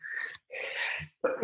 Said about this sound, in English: I'm about to sneeze.